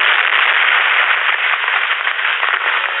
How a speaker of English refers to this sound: the police car topples and falls down, down into the ravine. The explosion illuminates the world below.